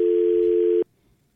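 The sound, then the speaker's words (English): A steady, loud telephone dial tone hums for under a second before cutting off abruptly, leaving near silence, as someone calls a phone number again. “Let's see, I got to call it again.”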